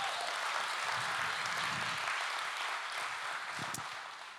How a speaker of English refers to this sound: Yes, give them a clap.